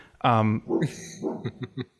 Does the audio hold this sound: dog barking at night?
yes